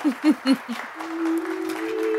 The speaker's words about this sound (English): And as you step through the doors, there is an uproarious applause.